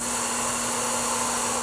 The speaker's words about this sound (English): It comes with a little mask to put over your nose and mouth and contains about 160 one-second shots of air. This is not pure oxygen, so it's not flammable, and it's not the high-pressure canned air used to clean dust off stuff like your car engine.